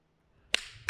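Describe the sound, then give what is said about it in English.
A sharp, bright hand clap cracks out of near silence and rings off briefly, followed moments later by a second, slightly softer snap at the very end. No one speaks. “One clap.”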